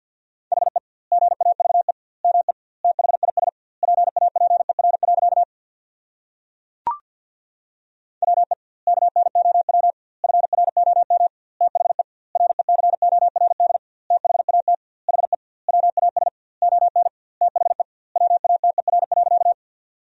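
Rapid Morse code beeps at 50 words per minute with double word spacing, sending sentences made from the 500 most common words, in a single steady mid-pitched tone, fast dots and dashes grouped into words with short gaps, broken once by a brief pause and a sharp click.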